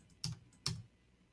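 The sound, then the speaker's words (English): Two sharp computer keyboard keystrokes clack about half a second apart, against a quiet background with no voices. “I think you got to start typing, and then you can add another.”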